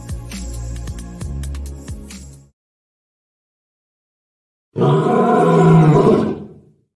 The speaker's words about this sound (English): Yeah, there you go. There's a lion.